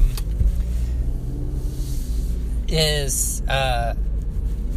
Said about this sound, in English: Wow, my brakes are really squeaky because it's wet.